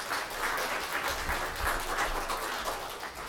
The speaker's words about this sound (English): They've both got three children present, so let's give them both a round of applause.